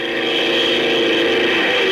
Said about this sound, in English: Plane number 4, taking off for tactical maneuvers.